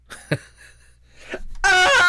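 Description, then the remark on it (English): A water leak detector alarm bursts on abruptly near the end as it detects liquid, with a loud, piercing, buzzy high-pitched shriek, rich in harmonics, after a few faint rustling sounds. “And then if it gets liquid, it'll just scream at you.”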